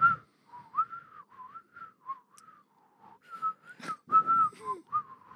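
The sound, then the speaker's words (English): A grandfather whistles a made-up, wandering tune of short rising and falling notes, fairly loud, with brief pauses between phrases and no talking. “He just makes up his own shit and whistles.”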